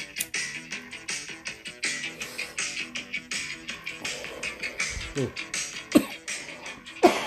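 Music plays throughout while someone clears their throat and coughs a couple of times near the end, sharp, cutting through the steady beat.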